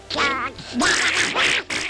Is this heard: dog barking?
no